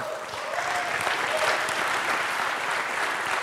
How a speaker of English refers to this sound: Huge, huge applause line. I mean, I think people have been dying for this, but the Files app.